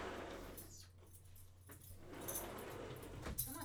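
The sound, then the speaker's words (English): Dogs are let back in, their collar tags jingling in bright metallic bursts amid soft scuffling and movement, with a sharper clink near the end. “I'm letting the dogs back in, guys. You're going to hear some jingling and some rampaging.”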